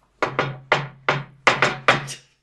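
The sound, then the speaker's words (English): A crisp series of about eight knocks on a wooden door, tapped in the playful shave-and-a-haircut rhythm with uneven spacing between hits and no voices. “Stop trying to do shaving a haircut”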